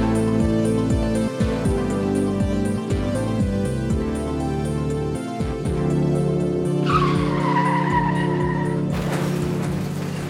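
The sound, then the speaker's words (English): A loud, continuous train sound effect marking the start of a show segment, with deep droning horn-like tones that slide in pitch, then a high metallic screech like brakes squealing over the rumble. No one speaks. “If you hear that train noise, you know it's time for Strain Wreck, the segment of our show where we discuss what we're smoking this episode”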